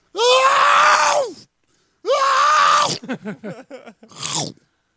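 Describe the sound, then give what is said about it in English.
A man vocally imitates a man being eaten by a dinosaur: two long, loud anguished screams, then a rapid run of crunching, chomping mouth noises, ending with a short strangled cry. “Yo, what's it sound like when a dude gets eaten by a dinosaur?”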